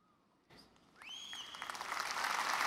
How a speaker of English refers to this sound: Wait, why is there clapping for that? Because he left a big pregnant pause clearly designed to be filled with clapping?